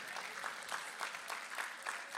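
A small audience applauds, a dense patter of clapping with a slightly pulsing rhythm, steady and moderately loud throughout the short moment, with no voices rising above it.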